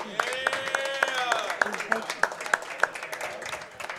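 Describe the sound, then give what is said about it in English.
Steady, rhythmic clapping from a small group, about three claps per second, mixed with overlapping voices and chatter, applauding the owners of the new Bertie's Inn for hosting. “Let's give them a round of applause for hosting us.”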